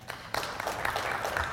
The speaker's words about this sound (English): Clap if you've ever had fear of success.